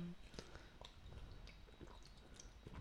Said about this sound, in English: I'm going to hold his mic so you can hear him gulp.